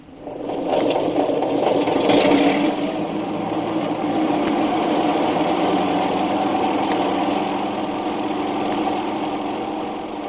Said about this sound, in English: Wait a minute. There comes a plane in now. We can't take off.